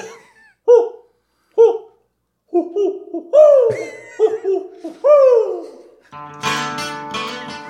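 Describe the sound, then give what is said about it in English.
An owl hoots: a few short, evenly spaced hoots, then longer wavering calls that slide downward, ending in a harsh, buzzy burst. Fairly loud, with no talking. “We've got an owl who's going to visit us.”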